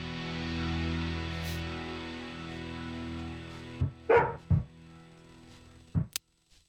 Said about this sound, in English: Oh, and there's my dog ruining the show.